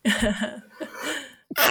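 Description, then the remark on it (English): A single sneeze: a drawn-out voiced inhale building up, then a sharp, noisy burst of air at the end, loud with no talking around it. “Sorry, sneeze.”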